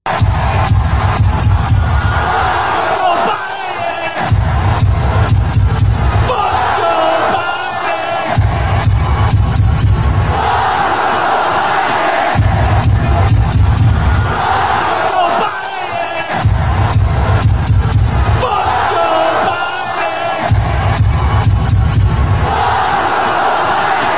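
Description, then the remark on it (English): A huge stadium crowd at the Army-Navy game chants "FJB" in unison, loud, rhythmic bursts of massed voices repeating every few seconds with brief dips between, sustained throughout; the chant went on for minutes. “Do you want to hear what the crowd was doing during that game?”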